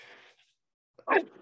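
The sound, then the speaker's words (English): A single loud sneeze bursts out after a moment of near silence, sharp at the onset and trailing off quickly, with a faint breathy sound before it. “Bless you.”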